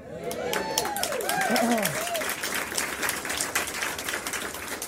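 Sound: audience applause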